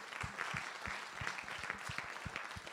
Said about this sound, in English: So I think that in itself deserves a round of applause.